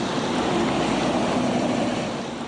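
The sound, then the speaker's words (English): A log truck's engine brake rattles loudly in a dense, steady rumble as it gets through a sharp road corner, easing off slightly at the very end. No one speaks. “But if they come 100 k's an hour or 80 k's an hour from town and end up to the road, then they need the engine brake to get through the corner. And that's what it's all about. That rattling one I'm talking about here, that's not that bad.”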